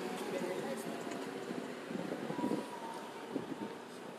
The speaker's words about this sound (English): Another truck coming.